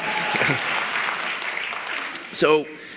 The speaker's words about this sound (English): It's okay, you can clap on that. Yeah.